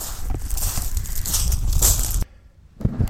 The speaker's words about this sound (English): Oh, that was windy out there, wasn't it?